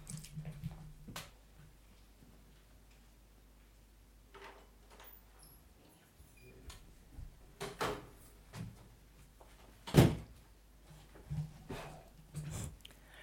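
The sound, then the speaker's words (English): A door being opened for a man fixing a bathroom shower door, with a series of scattered clunks and rattles building to one sharp, loud knock, over a quiet background hum with no talking. “Sorry, I had to open the door because there was a man fixing my bathroom, my shower door.”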